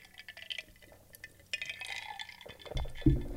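Someone takes a drink: quiet slurping and liquid movement, faint glass clinks, then a louder low thump near the end as the glass is set down. No talking.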